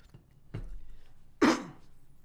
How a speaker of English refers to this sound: Excuse me. About got strangled. Let me take a sip of water.